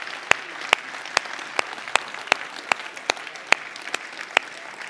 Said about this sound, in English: Now, if you will, get up off your Methodist tails and clap and cheer for Jesus with me this morning. Would you just give him a round of applause for who he is?